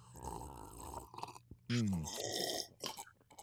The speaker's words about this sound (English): Well, this is where we all have sips of water. Yes, we do. Yes. Let's make it more audible, right. Shall we? Here we go.